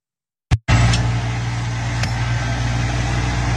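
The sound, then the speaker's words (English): A tractor engine rumbles steadily with a deep, even drone after a moment of silence and a brief sharp click, holding a loud, constant low hum with no voices, as the tractor is used to pull down a Confederate monument. “People voted, I tried with a hammer, that wasn't enough. So now here come the tractors.”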